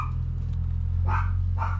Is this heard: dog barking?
yes